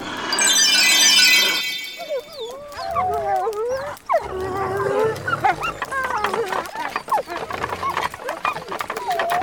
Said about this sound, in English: How those wolves slobber! They're so shaggy and dirty they need gloss in their coats.